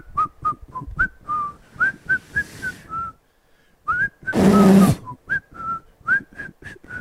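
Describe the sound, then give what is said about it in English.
A person tries to whistle into a microphone, a wandering tune in short, breathy notes, with a brief pause and a burst of loud rushing air midway before the whistling resumes. “you're going to walk backwards slowly while you're whistling into the evidence room”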